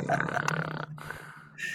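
A loud, raspy snoring rattle for under a second, trailing into a softer low drone and ending with a short breathy exhale, with no talking.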